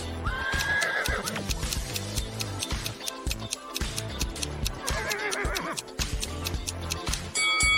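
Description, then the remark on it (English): A horse neighs loudly twice, with shrill, wavering whinnies near the start and again midway, over sharp clicking and clattering noises, clear with no one speaking. “And whose horse is this?”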